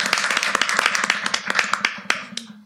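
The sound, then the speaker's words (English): An audience applauds for Dr. Shalee Sims as she is introduced, a dense, steady patter of many hands clapping with a few sharper claps standing out, fading slightly toward the end. “Yeah, let's hear it for Dr.”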